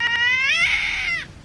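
A single loud, drawn-out cat screech, harsh and wailing, holding for about a second before cutting off abruptly, with no other sounds around it.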